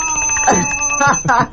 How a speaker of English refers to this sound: This is our bell.